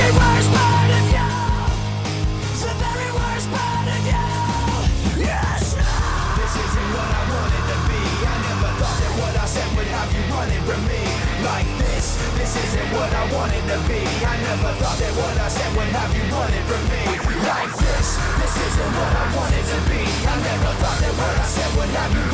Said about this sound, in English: Yeah, I mean, his screams are amazing on this record.